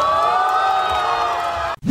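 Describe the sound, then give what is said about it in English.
A crowd erupts in loud, sustained cheering with high whoops and yells as 21-year-old American Max Park sets a Rubik's Cube world record of 3.13 seconds, a dense wall of excited voices that holds steady and then cuts off abruptly. “This is how Park and the crowd reacted.”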